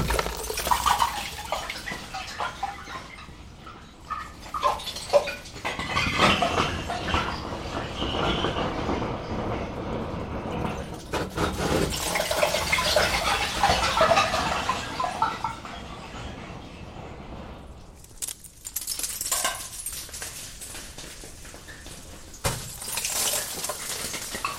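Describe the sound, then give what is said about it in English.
Ice chunks knocked into a deep glacier crevasse clatter and ring out in melodic, xylophone-like tones, a dense run of knocks and chimes with a brief lull before more tumbling ice. “The third category is this thing I'm calling a kind of ice xylophone. It's this melodic tonal kind of ice.”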